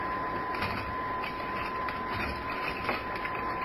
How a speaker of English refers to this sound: Shall we say the lowest card is the one? If you like. They're all shuffled.